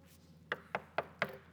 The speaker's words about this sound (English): I've knocked on the door before.